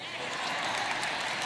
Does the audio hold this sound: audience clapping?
yes